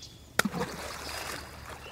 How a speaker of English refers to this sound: The haiku. The old pond. A frog jumps in.